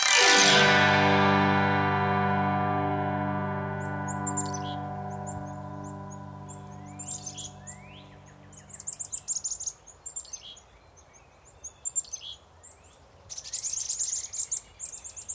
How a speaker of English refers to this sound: Black-capped chickadees. Five of them, moving in a small flock from tree to tree. They chatter to themselves quite energetically, as they forage for insects and seed.